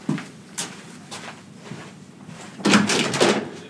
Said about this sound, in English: I will be opening up the door for her because she was a little bit late. Give me one second.